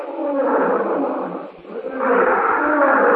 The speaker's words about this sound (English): Roar